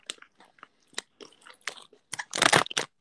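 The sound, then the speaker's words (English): Someone crunches Miss Vicky sea salt and vinegar kettle chips, with irregular crisp, crackly bites and chewing that build to a louder, dense burst of crunching near the end. No one speaks. “Miss Vicky, sea salt and vinegar, kettle chips.”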